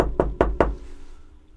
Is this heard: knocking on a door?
yes